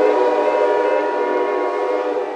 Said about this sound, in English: Then, from somewhere, way off in the twilight, a train whistle echoed through the hills.